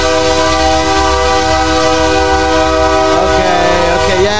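A loud, sustained train horn blares for several seconds as a train passes, holding one steady chord before its pitch wavers and bends near the end, with a low rumble underneath.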